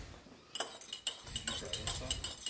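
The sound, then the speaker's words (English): A metal fork clinks repeatedly against a cup, several bright, high ringing taps in an uneven stirring rhythm, moderately loud, with faint murmuring voices underneath. “I have a fork here. I'm going to use.”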